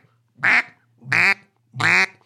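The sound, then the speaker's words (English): Three loud, evenly spaced quacks from a blown duck call, each a raspy, nasal blast lasting about a quarter second, with short silences between them. “Yeah, if you don't think duck calls are weird, you got to see this.”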